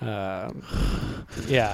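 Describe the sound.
A voice exaggerates heavy breathing right into the microphone: a loud, rushing, breathy breath, framed by short voiced sighing or gasping sounds.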